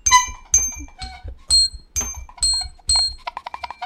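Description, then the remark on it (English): A broken-sounding horn gives a series of bright, ringing, bell-like blasts, about seven evenly spaced, then sputters into a quick stuttering flurry of short bursts at the end. No one speaks. “I think this horn is broken.”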